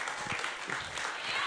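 An audience claps steadily, a dense crackling wash of many hands that holds at an even loudness throughout, with no voices standing out.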